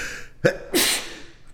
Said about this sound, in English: Excuse me. No, a little sneeze on the air there.